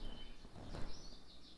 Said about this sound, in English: And these birds are getting better. They're getting better at chirping.